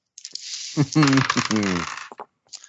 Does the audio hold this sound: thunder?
no